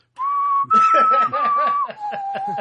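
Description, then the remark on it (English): A short whistled signal tune of three sustained notes, rising then dropping, whistled as the signal once used at work to find a colleague in the bathroom, while someone snickers and chuckles underneath. “And then she whistled back, like, all right, I know where he is.”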